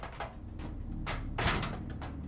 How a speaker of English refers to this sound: While Herschel is yanking on the door like a man who's lost his wits,